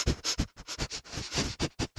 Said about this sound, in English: Yeah, I sniffed and I could hear it through my headphones. And I was like, oh man. We're talking. Well, I did that, so I can't edit it out. Oh. So it just sounds like a dog, like, sniffing the microphone.